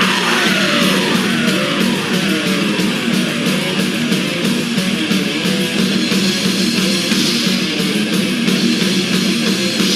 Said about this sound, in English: I mean, so far for me, this is just a rock solid mid tempo thrasher, basically. Nothing excessive in terms of, you know, technique, speed, aggression, any sense of depravity. It's just getting on with its job, and it's doing it really, really well.